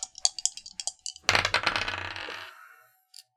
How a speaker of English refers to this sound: That's odd. Both of my dice rolled the same number. Hmm. At least it's an 18. I'll take it.